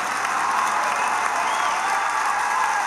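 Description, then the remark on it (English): An audience, led by the women in it, claps steadily, a dense, continuous patter of many hands with a hint of crowd noise, fairly loud and sustained for the whole stretch without any voices on top. “Men, you can clap too.”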